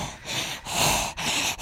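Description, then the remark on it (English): Heavy, raspy breathing blown straight into a microphone, several rough inhale-exhale bursts in a steady rhythm, loud and hissing with brief pauses between breaths, no talking. “Are you breathing through a straw in the desert or something?”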